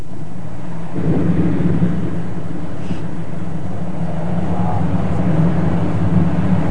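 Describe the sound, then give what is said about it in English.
A glacier in the high Arctic calves, shedding great chunks of ice into the ocean: a deep, heavy rumble surges in after a second and rolls on steadily, loud and booming, with no voices. “Like many here, it's shedding great chunks of ice into the ocean.”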